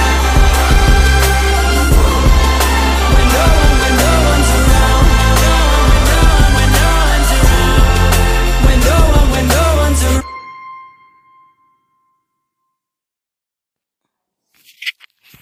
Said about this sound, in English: I hope everybody enjoyed that song as much as I do.